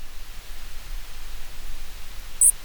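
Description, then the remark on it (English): A steady hiss of underwater background noise, then near the end two short, bright high-pitched electronic bursts ring out, the signal pings of a deep-sea submersible's underwater acoustic modem. “That is the acoustic modem on the limiting factor.”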